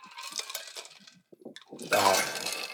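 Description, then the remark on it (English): Glasses clink together in a toast: a scatter of light, bright taps followed by a louder, fuller clink that rings out briefly. “So cheers to Caesar. I'll drink to that.”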